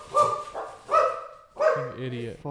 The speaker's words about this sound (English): Motherfucking dog.